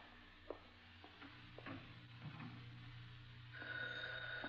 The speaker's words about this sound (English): Phone? Yeah, all right, we're getting it.